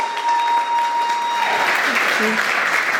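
An audience breaks into steady applause, a dense wash of clapping that swells after the first second and holds at a strong, even level to the end, with a faint steady tone underneath at first.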